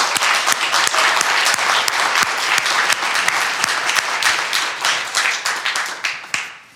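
A room full of people applauds as a clap offering to God, a dense, steady wash of clapping with sharper individual claps standing out, sustained loud throughout before tapering off near the end.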